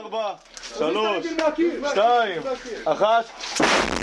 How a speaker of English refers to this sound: Explosions and gunfire have rocked the alleys of Jenin refugee camp since the early morning. Israeli forces launched a huge assault using hundreds of ground troops, as well as airstrikes, even sending in bulldozers.